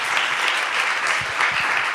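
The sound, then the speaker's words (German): Audience applause at a panel event, welcoming the panellists and the moderator, fills the whole two seconds, a dense, steady wash of many hands clapping at an even, fairly loud level, with no one talking over it. “Einen Applaus bitte.”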